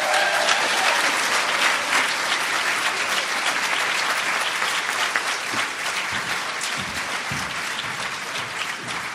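An audience at a meeting applauds a speaker after her share, dense clapping filling the whole stretch at a constant, fairly loud level with no voices standing out, easing only slightly toward the end.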